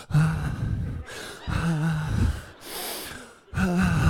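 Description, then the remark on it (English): A person mimics the heavy, labored breathing of someone lying on a couch in a food coma after overeating: slow, loud breaths with a groaning voiced edge, alternating in and out about four times with short pauses between. “And you end up in what I call the food coma, where you just lie on the couch and the only thing you can do is breathe like this.”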